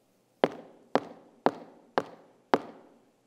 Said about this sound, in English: Well, listen, do you hear that knocking? That's opportunity knocking.